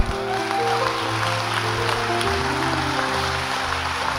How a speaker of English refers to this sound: Oh, you should clap more than that.